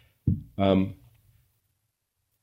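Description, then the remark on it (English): A single loud sneeze, a short intake-like burst followed by a sharp explosive "choo," then quiet with a faint noise at the very end. “Gesundheit.”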